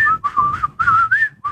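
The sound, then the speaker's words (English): Someone whistles a short, bouncy melody, the little Steamboat Willie song once shown before Disney movies, humming, breathing and whistling at the same time, the notes breathy and choppy, with a low hummed undertone beneath the whistle and no talking. “Yeah, that was a hum, breath, and whistle at the same time.”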